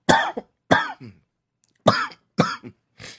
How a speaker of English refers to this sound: That was not a corona cough. It is.